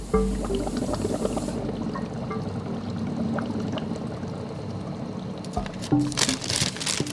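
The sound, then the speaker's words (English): Water pours steadily into a hydroponic growing system to top up the water level for the plant roots, a continuous splashing gurgle that rises into brighter, louder splashes near the end. No one speaks. “Also, I need to fill up the water level for the roots.”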